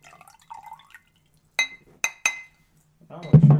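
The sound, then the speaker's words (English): A drink is poured into a glass: three bright glassy clinks ring out, then a splashing pour begins at the end. A faint murmur of voice comes first. “I'll pop this fucker open. Smells good. I'm going to pour a Khanze a little bit here.”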